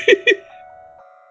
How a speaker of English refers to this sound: Monday morning. There's the bell. Everybody gets a class.